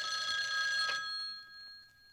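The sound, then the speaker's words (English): A phone line rings on an outgoing call to a psychologist: one bright, steady electronic ring tone for about a second, then a fading tail. There are no voices. “It's time to call our favorite psychologist,”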